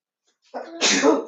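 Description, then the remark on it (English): A single loud sneeze from an older brother: a short breathy intake building into a sharp, hissing burst that trails off, with no talking around it. “Bless you, no one.”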